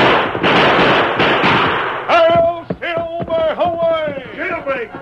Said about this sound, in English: Later that same night, the town was awakened by a volley of shots.